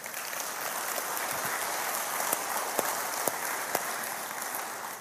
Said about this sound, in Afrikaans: Manne, kan ons vir die vrouens 'n lekker hande klap gee.